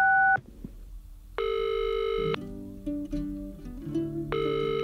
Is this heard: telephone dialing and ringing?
yes